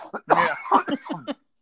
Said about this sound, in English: Sorry, buddy. You're gonna have to excuse me. I still have a lot of congestion, so I'm coughing more than I intend to here.